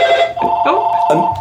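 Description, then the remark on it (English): A telephone rings with a steady, bright electronic tone, loud, while a voice talks over it for most of the short moment. “I'm sorry, my phones are transferred, and that's the good thing about technology.”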